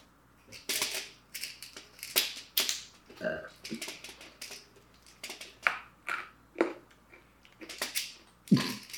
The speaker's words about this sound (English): What? You munching and crunching over there, huh?